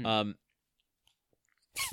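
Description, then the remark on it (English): A short burst of voice gives way to faint clicks and near-silence, then a sharp, breathy sneeze from a small pet bursts right into the microphone. “Sorry, Bill is sneezing.”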